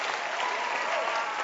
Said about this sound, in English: But the way you are sitting down, clap your hands for him.